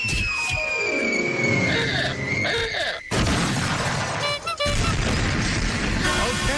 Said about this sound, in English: The SUV, which police told the couple had been stolen a half hour earlier, snapped a tree in half, took out part of their fence, demolished some... Demolished some raised garden beds. And sideswiped their car.